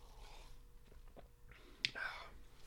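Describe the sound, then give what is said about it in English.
A quiet sip of a Dandy Blend drink: soft mouth sounds, then a brief click followed by a short airy slurp. No talking. “Just gonna take a sip of my dandy blend here.”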